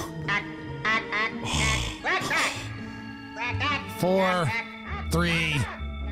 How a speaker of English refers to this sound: The Martian ambassador is going to say a few words.